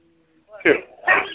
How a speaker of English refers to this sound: Max, calm down, Max. That's his dog. Oh, yeah, I hear that thing yapping all the time.